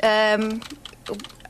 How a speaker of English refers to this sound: Right, you can stop the typing. Okay. That's frenetic typing.